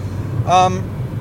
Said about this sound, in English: We are on the podcast. I'm driving my car on CarCast. CarCast again.